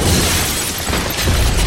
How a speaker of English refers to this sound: He barely stood before the door of Snow's home was smashed open. In he came, with an army of snow monsters behind him.